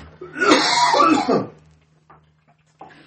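A man lets out a harsh, rough cough lasting over a second, close and loud, followed by quieter throaty sounds and a short breath near the end.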